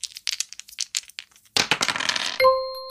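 Dice are rolled, clattering and ticking in quick bursts, then a dense rattling tumble ends in a bright sustained chime. Loud, with no voices.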